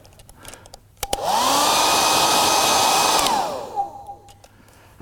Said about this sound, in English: So she got Mummy's hairdryer.